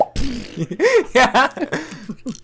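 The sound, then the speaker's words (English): A voice imitates a cork gun popping with a quick series of loud mouth pops and squeaky voiced bursts, tumbling over each other for a couple of seconds. “We're back to the cork gun. Cork popping noise.”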